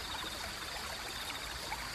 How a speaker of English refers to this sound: There's running water. It's the brook that all the creatures of this meadow drink from when we're thirsty. Let's walk over to it, letting the soft, soothing sounds of running water flow over us as it helps to quiet our minds.